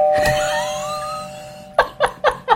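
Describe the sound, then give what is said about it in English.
A single bright, artificial bell sound effect, a 'bing', strikes and rings out, its shimmering overtones slowly fading over a second or so, then several short bursts of laughter follow. “Can we do some other kind of bell sound where we go, bing? I can put in an artificial bell there sound.”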